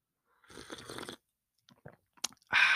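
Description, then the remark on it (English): A noisy slurp of a hot morning brew lasting under a second, followed by faint mouth clicks and swallowing, then a loud breathy exhale at the end. “Wait, let me get a sip of this morning brew.”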